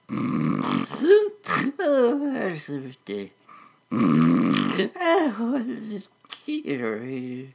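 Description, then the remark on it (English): A voice imitates the Wheedle's loud, snorting snores as he sleeps atop the Space Needle in Seattle: several rough, gurgling bursts with swooping pitch, broken by brief pauses, with no other sounds around them. “With each snarkled snore, his big red nose slowly blinked on and off and off and on again.”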